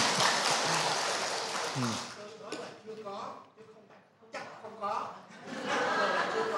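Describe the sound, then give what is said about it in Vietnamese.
A burst of clapping from a crowd fills the opening seconds, fades as people talk over a thinner patter, then the applause swells again loudly near the end. “Ta cho một tràng pháo tay, một người cán bộ mẫu mực.”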